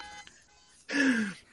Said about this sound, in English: Jesus, how is that still going? Well, obviously it's a car alarm, but. Hold on, I'm going to solve it.